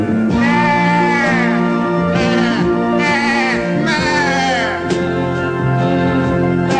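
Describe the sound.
A man's voice bleats like a sheep in long, wavering cries, loud, through an entire orchestral arrangement, over a sustained orchestral backing with strings holding steady chords throughout.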